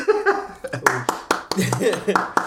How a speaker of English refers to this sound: Golf clap.